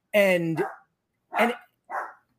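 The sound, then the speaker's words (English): A dog barks three times: a longer, drawn-out first bark, then two shorter sharp barks spaced about half a second apart, with silence between. “If anyone can help me with these dogs, it would be great.”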